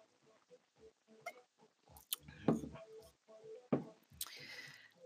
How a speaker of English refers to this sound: So anyway, on the relationship portion, let me take a sip of my tea.